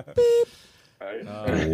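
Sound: beep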